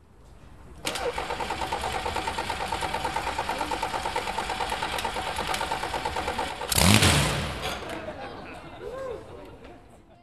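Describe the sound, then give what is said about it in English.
An engine turns over and settles into a steady, throbbing idle, then roars in a sharp rev near the end before easing back down, with an audience murmuring faintly behind. “Maybe the engine guys do it on purpose.”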